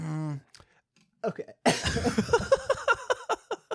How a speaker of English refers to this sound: I made myself cough on my own consternation.